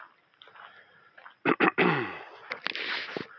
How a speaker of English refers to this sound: So I'm walking uphill right now, in case you're wondering why I'm breathing a little heavier.